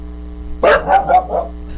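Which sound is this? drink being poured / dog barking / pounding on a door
dog barking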